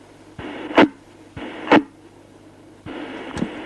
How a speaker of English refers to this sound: The hiss level's modulating about 20%. It is too, exactly.